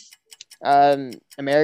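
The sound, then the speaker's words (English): A few quick, crisp ticks of a clock timer started for a timed sports quiz question, followed by two longer humming, voice-like tones, with the ticking briefly returning between them. “Okay, start the clock.”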